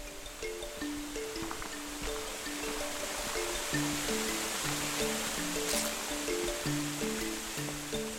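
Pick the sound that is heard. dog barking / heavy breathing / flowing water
flowing water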